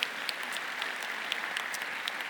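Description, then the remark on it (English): Steady applause from an audience for kids who came up front, a dense wash of many hands clapping at once with scattered sharper claps standing out, sustained at an even level throughout. “Let's give these guys a round of applause for being brave to come up here.”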